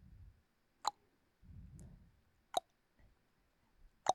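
water dripping

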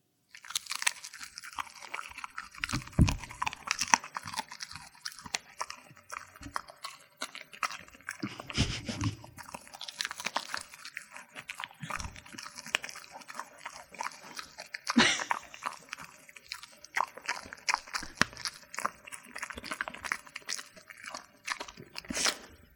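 chewing beef jerky

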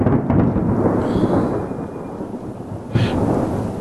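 loud thunder

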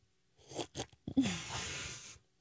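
loud slurping

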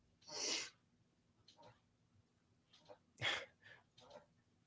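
sneeze

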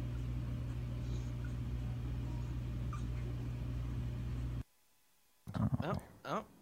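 puppy whimpering

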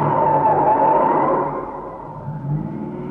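car driving

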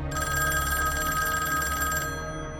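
telephone ringing

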